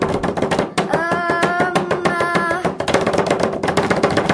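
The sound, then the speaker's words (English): A fast, steady drum roll of hands tapping on a hard surface, loud and continuous for several seconds, with a sustained hummed tone briefly rising over it partway through. “Should we do a drum roll? I can knock that out.”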